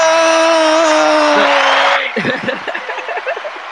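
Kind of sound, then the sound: crowd, crowd cheering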